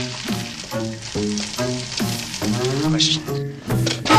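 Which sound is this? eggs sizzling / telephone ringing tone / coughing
eggs sizzling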